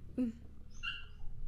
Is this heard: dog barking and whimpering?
yes